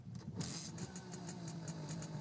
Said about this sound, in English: So, little old lady detective revved up her moped and took Barney back home to the scene of the crime.